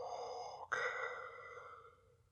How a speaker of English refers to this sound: You hear the sound of the helmet and the suction and the airtight seal to keep him alive. And then the famous Vader breathing.